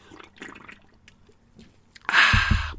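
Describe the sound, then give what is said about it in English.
A loud, wet slurp of a drink bursts in near the end, lasting under a second, after a stretch of faint small clicks and rustles. No one speaks. “I am going to raise a drink to you as I am now. I'm going to have a slurp.”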